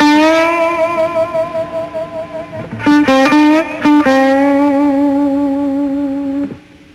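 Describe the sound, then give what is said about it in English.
A sustained electric guitar note wavers with steady vibrato, then a few quick picked notes bend upward before a long, wobbling held tone rings out and cuts off. No one speaks. “Here the reporter goes, I can't believe what I just heard, how you bent those strings and made it vibrate, the vibrato he's talking about.”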